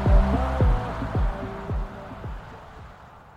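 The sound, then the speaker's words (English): Loud, bass-heavy music booms from a car coming down a street on a dark, cold night, with deep thumping beats about twice a second and a muffled melody, gradually growing quieter over a few seconds. No one speaks. “When all of a sudden, I hear car blasting music coming down the street.”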